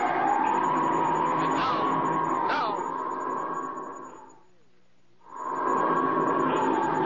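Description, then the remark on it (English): An approaching boat's motor drones loudly and steadily with a high whining tone, drops away for about a second, then surges back just as strong. No one speaks. “Listen. There's the boat now.”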